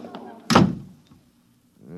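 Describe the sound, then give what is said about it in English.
An office door slams shut once, loud, with a heavy thud that rings briefly before fading. A voice is heard just before the slam, and another starts speaking shortly after. “Every time I open that door, they surge in like a tidal wave.”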